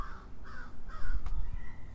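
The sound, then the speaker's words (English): Several harsh crow caws repeat in a steady series over a low rumbling background, with no one speaking. “I love the crows in the background.”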